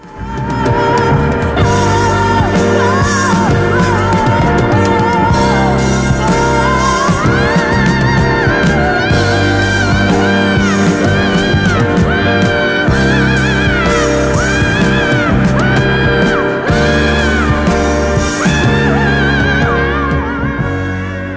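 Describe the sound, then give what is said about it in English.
A 1974 rock recording: a full rock band with piano plays loudly and steadily while a soaring, wordless vocal wails and screams above it in long, sliding cries, continuing throughout. “Could not choose this song for that's a great scream. Best scream song.”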